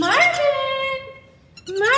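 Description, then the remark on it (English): A black-bellied whistling duck named Marvin gives two whistly chirps as he gets excited: a loud call that slides downward and fades over about a second, then a brief pause and a second rising chirp. “So he gets more excited and he starts to do these little chirps.”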